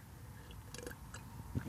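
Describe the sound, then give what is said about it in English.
Wet mouth sounds of someone slurping a sip of cask beer, a few short bursts of airy sucking and smacking over a quiet background, with no talking. “I said that slurping on the radio a little while ago, when we did this at Christmas with mince pie coffee, I thought I'd try.”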